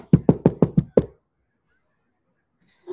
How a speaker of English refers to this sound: Knock on wood. Hold on. Let me get some wood.